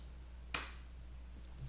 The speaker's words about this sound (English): we're going to start with our customary coin flip here on Best of the Best. Today we are dealing with our now standard huge-ass Hoover Dam coin with the Indian on the front, the dam on the back. Go ahead and call it in the air. Here we go. Heads.